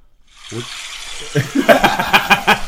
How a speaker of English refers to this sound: playing water sounds.